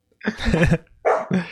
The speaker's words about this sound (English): Do I hear a growl?